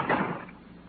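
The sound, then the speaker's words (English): A man slams a door shut in someone's face once, a sharp thud that rings out briefly and fades within half a second, with no voices. “The man who slammed the door in my face had the same angry look and the same angry glare of Ben Comiskey.”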